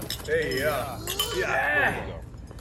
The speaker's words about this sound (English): Hey, that's a cheers moment.